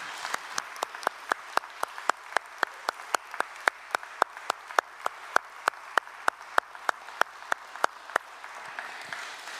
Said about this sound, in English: And I wonder whether we could just really embarrass them for a moment by all of us turning around and giving them a round of applause, because they do a remarkable job.